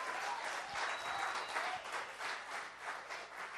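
An audience breaks into a steady round of applause, many hands clapping together in a dense, sustained wash of sound that holds at an even loudness throughout.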